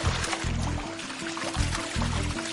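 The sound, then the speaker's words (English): A basilisk lizard, nicknamed the Jesus Christ Lizard, skitters across a water surface, driving its feet down hard and fast: a quick, continuous run of light splashes and patters, fairly loud, with low sustained tones rising and falling underneath. “This skitter across the surface of the water earns it precious seconds and the nickname Jesus Christ Lizard.”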